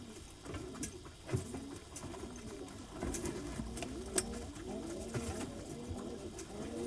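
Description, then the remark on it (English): Several pigeons coo in low, throaty warbles that overlap continuously, with scattered soft flutters and pattering taps mixed in. No one speaks. “En commun, on a les pigeons.”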